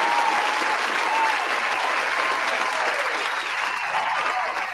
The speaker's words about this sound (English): Round of applause for the wrestling club, man. Round of applause.